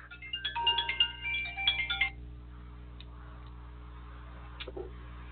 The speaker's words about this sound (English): I don't know if this call... I won't take it.